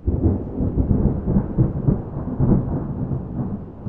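Steady rain pours down while deep thunder rumbles continuously underneath, a heavy, muffled roar with rolling swells that never fully fades. No voices are present.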